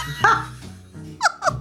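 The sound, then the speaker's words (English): A dog named Lucy barks three times: one sharp bark, a pause, then two quick barks close together. The barks are fairly loud over a low background hum. “Next style surgery won't just be Lucy, it'll be Lucy the dog.”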